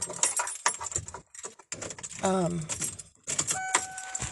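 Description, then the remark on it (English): Keys jingle and clink, followed by a van engine starting up with a steady tone, while a person's voice speaks briefly in the middle. “Where are my keys at so I can start up the van?”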